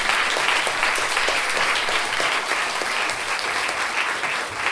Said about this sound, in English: Round of applause